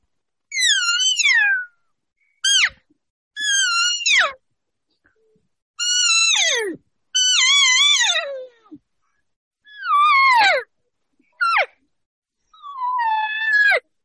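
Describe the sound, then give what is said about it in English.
A series of about eight elk cow calls blown on a reed call held in the mouth: high, whiny mews that slide downward in pitch, some drawn out and some short chirps, with pauses between and no talking. “And of course, you know, I'm dancing it around, and I usually even have another one or two with me at cow calls.”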